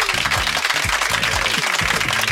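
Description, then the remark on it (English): Dense, steady applause from a crowd for the governor fills the whole moment, with some lower tonal cheering or voices sliding beneath the clapping. There is no clear speech. “Round of applause to the governor.”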